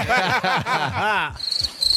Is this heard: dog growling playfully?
no